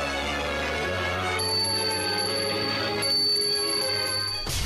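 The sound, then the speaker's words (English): A luncheon bell on radio station 93.3 WMMR rings out loudly to announce luncheon is served, struck about twice, each strike leaving a bright, lingering metallic tone that hangs over a dense, busy background before cutting off abruptly. “Yes, at the sound of the bell, luncheon is served.”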